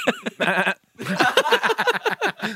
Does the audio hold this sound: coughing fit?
no